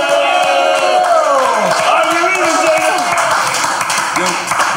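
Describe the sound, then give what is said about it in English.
A loud, dense crowd cheers and applauds for a rapper on the Drink Champs show, with shouts and whoops rising over sustained clapping that fills the whole stretch without pause. “Well, let's make some noise for ….”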